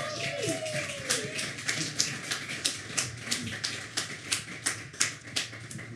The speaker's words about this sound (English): Can I please have a round of applause?